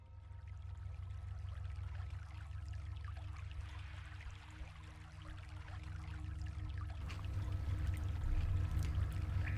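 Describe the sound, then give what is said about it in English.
Stale sewer water drips and trickles steadily in a sewer overflow over a constant low, droning rumble, filling the space at a fairly loud, even level and swelling slightly near the end; no voices. “The rhythmic dropping of the stale sewer water helps Tommy count the seconds as they pace through their corner of the overflow”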